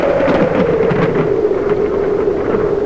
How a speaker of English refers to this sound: Typhoon. The dockside tavern shudders and groans around you, and a fierce wind slaps at the shutters.